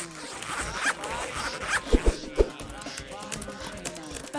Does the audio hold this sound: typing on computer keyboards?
yes